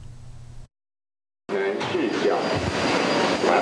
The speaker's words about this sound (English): The train arrives at the platform and the doors open.